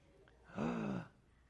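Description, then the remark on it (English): A single small, breathy gasp of excitement with a slight voiced tone, lasting about half a second before quiet returns. Nobody speaks. “Did you hear that little gasp?”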